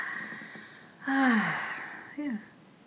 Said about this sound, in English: So you guys could try that even right now. Inhale to your heart and exhale down. So if you're lying, standing, doesn't matter, or sitting, we're rocking, sitting and breathing.